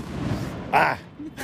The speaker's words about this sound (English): That was a firework.